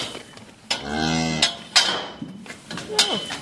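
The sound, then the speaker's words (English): A suckler cow about to calve lets out one drawn-out, low moo lasting under a second, amid sharp knocks and clatters on a family farm where suckler cows are calving and a few calves are nearby. “We have a suckler cow about to calve. And then we have a few calves down there as well.”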